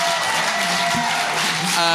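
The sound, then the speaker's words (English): A festival audience applauds the panel, a dense, even wash of many hands clapping at once, sustained at a constant level throughout with no voices standing out. “Before we go, can we please have a huge round of applause, firstly, to our fantastic panel for joining us here.”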